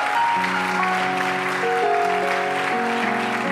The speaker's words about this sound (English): Give the Lord one more good, healthy hand clap of praise.